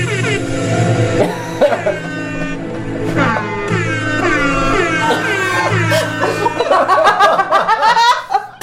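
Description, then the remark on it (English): A loud, blaring Illuminati air horn sound effect plays in sustained, layered blasts, with sharper repeated honks and bursts of laughter piling up toward the end. “Let's try the Illuminati air horn.”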